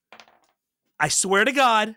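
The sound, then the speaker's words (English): A brief, light clatter of dice tumbling across a tabletop for a game roll, landing on a 5, a few quick clicks, then silence before a loud voice bursts in with an excited, drawn-out exclamation. “make a lasers roll”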